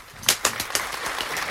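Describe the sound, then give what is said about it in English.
Sparse, scattered handclaps: a few sharp, crisp claps at uneven intervals, then a thin, soft patter of light applause with no voices. “In your applause.”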